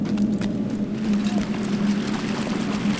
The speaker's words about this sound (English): Now, this is definitely a mine. There's some water, a source pouring out of the right side of the walls of this mine.